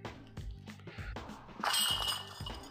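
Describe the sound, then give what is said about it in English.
A disc golf disc strikes the basket chains, setting off a bright, metallic jangling and clinking that swells loudly midway and rattles on for about a second before fading. “Bang chains.”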